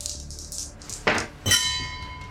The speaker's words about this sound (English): Wow. That was the gong for how bad my first roll was.